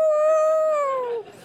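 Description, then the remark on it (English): A single drawn-out, dog-like howl from a human voice imitating a Rottweiler, steady and fairly loud, then sliding down in pitch and cutting off after about a second. No words are spoken. “She'd be confused, but she'd howl.”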